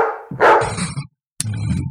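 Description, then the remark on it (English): A dog barks and whines at 10:15 p.m., heard by Nicole Brown Simpson's neighbor: a drawn-out whimpering cry flows into a loud bark, then a brief pause before another rough bark sequence. No one speaks. “At 10:15 p.m., Nicole's neighbor hears a dog barking and crying.”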